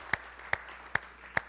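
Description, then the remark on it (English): Four sharp hand claps land in a steady, even rhythm, each a crisp bright slap over a soft hiss, like an audience clapping together in unison, giving the Lord a hand clap. “Give the Lord a hand clap, would you?”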